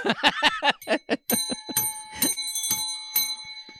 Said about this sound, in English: Is that when you ring the bell?